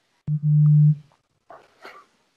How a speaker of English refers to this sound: Whose phone's going off?